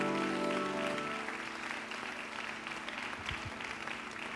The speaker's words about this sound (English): Would you give the Lord a great big hand clap of praise today?